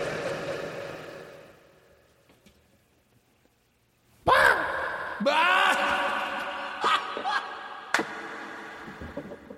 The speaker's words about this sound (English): I'll let you have the last word with reverb.